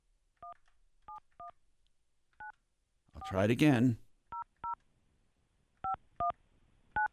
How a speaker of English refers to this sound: See, I'm doing something wrong. I mean, I'm dialing 9, but it's not helping.